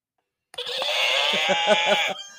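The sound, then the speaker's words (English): A horse neighs loudly in one sustained, quavering whinny of about a second and a half, with a rapid pulsing tremble toward the end before it cuts off. “That was a horse.”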